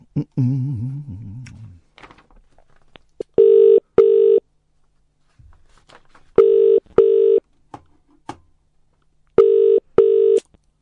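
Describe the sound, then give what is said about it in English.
A telephone is dialed with a few soft clicks to call someone back, then the line rings out: three clear double-burst ringtones at steady intervals, with a brief murmur of voice at the start. “Let me call him back.”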